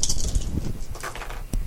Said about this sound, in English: in this one, you're just going to roll four dice. Okay. And add them up, which is the only time you do that in Shadowrun.